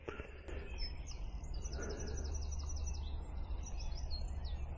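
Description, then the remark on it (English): Several birds sing and chirp together in a woodland as the listener enters the woods after the wind has died down, bright repeated trills and tweets overlapping over a steady low background rumble, with no one talking. “All you can hear is the sound of the birds, which is beautiful as you enter the woods.”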